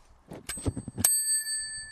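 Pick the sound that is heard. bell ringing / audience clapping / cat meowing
bell ringing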